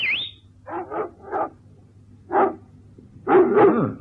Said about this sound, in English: The dogs, remember? Listen.